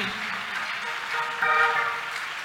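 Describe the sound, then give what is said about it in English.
A church audience claps together as a clap offering to the Lord, in a dense, steady wash of applause that fills the whole moment, swelling slightly partway through, with faint vocal cheering mixed in. “Take your seat and give the Lord mighty clap offering.”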